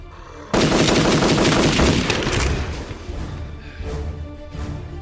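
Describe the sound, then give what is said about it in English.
A loud burst of gunshots fired rapidly one after another for about two seconds, then tapering into echoing rumble and a few scattered later shots, with no voices. “The gunshots. You called others here.”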